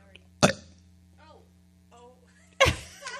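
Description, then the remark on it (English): Two short, throaty bursts about two seconds apart, a person forcing out a fake burp, with faint murmured voices in between and a low steady hum underneath. “Anybody know how to do a fake burp?”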